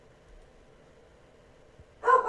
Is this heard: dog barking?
yes